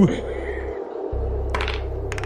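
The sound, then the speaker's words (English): Dice rolled for a perception check clink and clatter against a hard surface in two short bursts of rapid clicks, over a steady low background hum. “Here's a real clink problem I have. I have a choice over which dice to use.”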